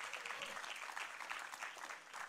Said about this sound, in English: So let the offering be picked up and applaud the Lord and the moms at the same time today.